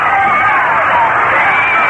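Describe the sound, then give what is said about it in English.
A big baseball crowd at Shea Stadium roars and cheers after Gary Gentry's base hit leading off the sixth inning, a steady, dense wash of voices, loud and sustained throughout with a few higher shouts poking through. “And the fans, a great crowd here at Shea, show their enthusiasm.”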